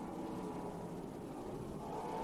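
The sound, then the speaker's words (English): A steady, droning rumble of race truck engines rolling past under caution after receiving the one-to-go signal across the start-finish line at the Dodge Dealers 400, before the second half of the race. A continuous low roar with no voices and no sharp revving. “Trucks have just received the one-to-go signal coming down across the start-finish line, getting ready for the second half of the Dodge Dealers 400 this afternoon.”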